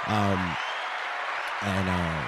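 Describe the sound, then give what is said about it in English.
Steady, dense clapping runs through the whole stretch, with a low sustained vocal cry at the start and another toward the end, like cheering over the applause. “Clap up to the boys.”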